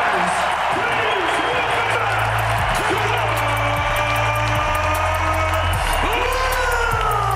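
An NBA arena crowd gives a loud, sustained standing ovation as Kawhi Leonard returns to his old team and is handed his championship ring by Kyle Lowry, dense clapping and cheering running unbroken for several seconds, with scattered whoops and rising whistles over the din.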